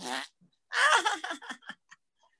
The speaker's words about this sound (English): And in the Stern show, you know, hey, Robin, I just farted.